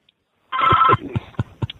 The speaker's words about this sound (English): Yeah, I got a phone ringing on me. Must be local Channel 3 trying to get you for an interview. They heard you on the Barbecue Central radio show. Actually, I'm on call for my job right now, and they're trying to get a hold of me for something.